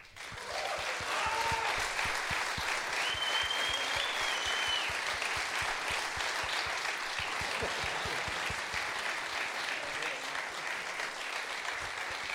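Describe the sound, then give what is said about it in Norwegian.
A large audience in Trondheim claps steadily and loudly for about twelve seconds to welcome the last guest of the day, Egon Holstad, a dense wash of overlapping handclaps with a few faint cheers and whistles mixed in. “Klapp så godt dere kan, da. For vår siste gjest I dag.”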